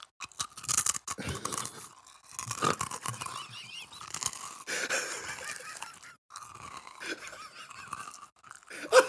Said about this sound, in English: Oh, I'm eating trail mix.